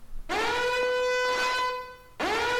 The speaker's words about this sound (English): Wait, what's that noise? Yo. It's the Jod alarm. It's the Jod alarm.